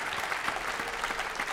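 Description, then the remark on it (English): A crowd at a festival in Savannah applauds a musician and his group steadily, a dense wash of many hands clapping at an even, sustained volume with no voices rising above it. “Before we go any further, please, one more round of applause to Mr. … and his amazing group.”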